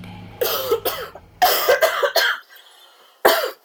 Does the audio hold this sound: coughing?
yes